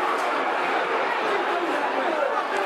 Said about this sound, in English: The ball breaks. This is Ben Marshall. Not, I thought he was tripped. Nothing given by the referee. Crowd howling, as you can hear.